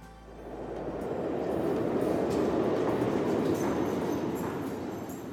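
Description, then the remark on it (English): A New York City subway train rumbles steadily along the rails, a loud, continuous low roar with faint rhythmic clatter, swelling in the first second and holding throughout without any voices. “lives in Brooklyn and works in Manhattan, and so he spends a lot of his time riding the subway and waiting for the subway.”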